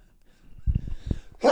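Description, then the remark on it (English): A person sneezes once, a sudden loud burst right at the end, preceded by a few soft low thumps and breathy shuffling sounds. “Bless you.”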